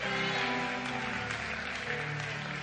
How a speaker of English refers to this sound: Somebody clap your hands and shout out, amen.